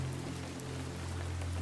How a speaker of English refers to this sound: It's a stark contrast to the torrential rain outside, which now falls with greater intensity, drumming upon the dozens of window panes that look out onto cottages and shops.